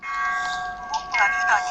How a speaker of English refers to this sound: This tolling of the bell in the distance is to celebrate me becoming the leader.